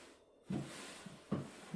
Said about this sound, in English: I can hear him going through drawers.